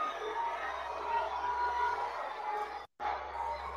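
A large crowd booing a woman on stage, giving thumbs down, in a steady, dense roar of many voices that holds at an even level, broken only by a sudden brief cut to silence near the end before resuming.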